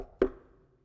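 A single sharp knock rings out, a solid rap on wood that fades quickly into a short, reverberant decay with no talking.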